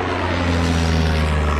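A steady, droning propeller engine hums throughout, its low tonal drone holding constant with a broad airy wash on top, like a small unmanned aircraft passing overhead.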